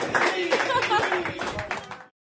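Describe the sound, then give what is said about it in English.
Audience applause at the end of a live show's conversation, a dense, steady patter of many hands clapping mixed with scattered voices and cheers, then cutting off abruptly after about two seconds. “round of applause.”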